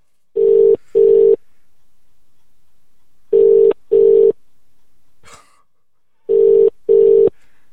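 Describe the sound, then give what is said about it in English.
A phone ringback tone purrs in steady double pulses, three pairs spaced evenly with silence between, plus a faint brief rustle in one gap. No one speaks. “It's ringing as well.”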